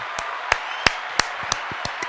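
Someone claps in a quick, steady rhythm, about eight or nine sharp claps with a few softer ones in between, over a faint constant hiss and no talking.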